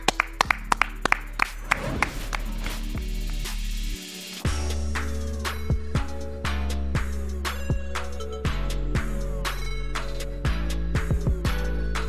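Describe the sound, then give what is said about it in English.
Sharp, rhythmic hand claps snap out over a loud, bass-heavy music bed, repeating in a steady beat for several seconds with no one talking. “Clap it up.”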